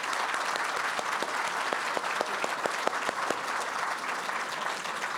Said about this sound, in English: So let's give another round of applause.